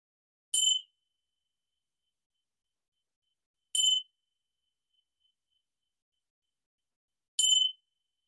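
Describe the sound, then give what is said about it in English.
Three bright, high bell chimes ring out alone to close a meditation, evenly spaced a few seconds apart, each struck once and fading quickly into silence. “In a second, you'll hear the bells chime, and as they chime, you can come back into the room that you're in and open your eyes or stretch and get some water.”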